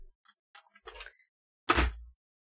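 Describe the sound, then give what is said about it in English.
A few light plastic clicks and rattles, then a loud clattering crash with a heavy low thud as a keyboard is dropped. The impact rings briefly, then stops. Nobody speaks. “Sorry, I dropped the keyboard.”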